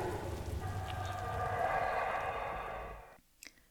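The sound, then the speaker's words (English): Steady rain hisses for about three seconds, overlaid by loud sustained droning calls from creatures overhead, then cuts off abruptly into near silence with a faint click or two. “The sound of these creatures above my head in the rain is one I will always remember.”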